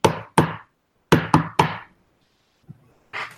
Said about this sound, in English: you hear the knock, which is